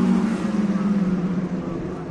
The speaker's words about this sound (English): Sitting at my site, watching the cars race by.